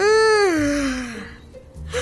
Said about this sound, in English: I gave you my yawn! What? How'd that happen? Yawns are catchy.